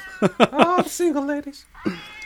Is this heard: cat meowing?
yes